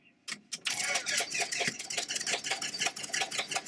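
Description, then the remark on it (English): A couple of short sputters as the engine is cranked with a key, then it catches and settles into a loud, steady, throbbing roar, with no voices. “Here's a key, like with a car. You have to turn this to the right and crank the engine.”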